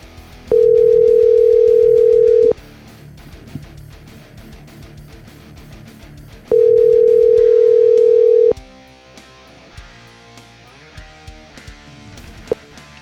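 A phone call ringing out: two long, steady mid-pitched ring tones, each about two seconds, separated by a pause, sounding loudly over soft background music with no talking.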